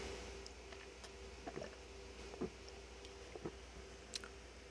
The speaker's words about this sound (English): Let me get a drink of water here, excuse me.